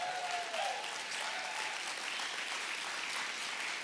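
Sustained applause from a large group giving God a hand clap in the morning, a dense, steady wash of many hands clapping at once with no pauses, fairly loud throughout. A brief tonal whistle or cheer sounds near the start.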